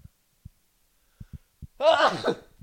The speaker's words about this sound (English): hold on, I gotta sneeze.